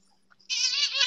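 A cat lets out one loud, drawn-out meow up close, starting after a brief quiet moment and holding steady until the end, with no talking.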